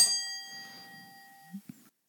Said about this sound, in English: What's your favourite sound beginning with E? Ding.